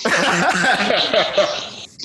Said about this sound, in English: On that note, I'm coughing.